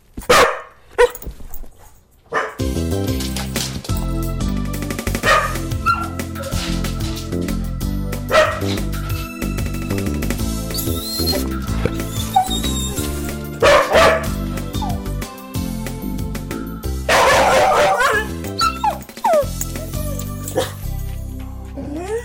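A dog barks in scattered bursts and whimpers between them, over a steady background of music that runs throughout.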